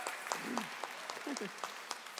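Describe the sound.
A round of applause from a group for a volunteer helper, on behalf of all who helped that week, steady dense clapping with a few sharper claps standing out, while voices briefly murmur underneath.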